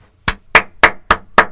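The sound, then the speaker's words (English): Five loud, sharp hand claps in a steady, even rhythm, each a bright popping smack with a short ring after it, with no voices. “That's a very loud, popping, large Italian man slapping his hands together.”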